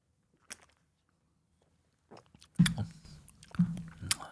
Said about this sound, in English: Here's my first sip.